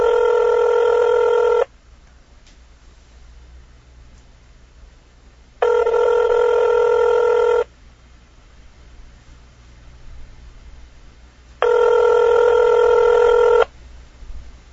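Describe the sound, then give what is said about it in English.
A telephone rings out three times as a call is placed to President Obama on vacation in Rio de Janeiro, each ring a steady two-second buzzing tone separated by about four seconds of faint hiss, with no voices. “What must it be like to be the guy who calls Obama while he's on vacation?”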